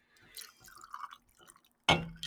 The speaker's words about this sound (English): Let me just pour myself a drink. Another drink real quick. Another.